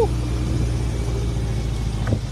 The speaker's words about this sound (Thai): ขึ้นรถกระบะไม่ได้ขึ้นนานแล้วนานมากๆแล้วเมื่อก่อนตอนเด็กๆเนาะก็ขึ้นรถกระบะชมวิวลมแรงๆ